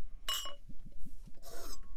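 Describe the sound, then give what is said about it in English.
A bright glass clink rings out, followed by a quick run of soft, rhythmic glugs as scotch whisky is poured into glasses, then a brief splashing hiss of the scotch filling a glass. “We should probably pour some. Let's pour some.”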